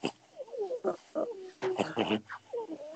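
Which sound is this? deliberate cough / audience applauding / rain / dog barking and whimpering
dog barking and whimpering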